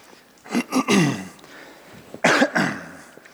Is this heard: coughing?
yes